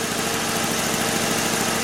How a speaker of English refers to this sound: Just when I think they've packed it in for the day, out comes the lawnmowers to cut the 3-foot by 5-foot yard down the street.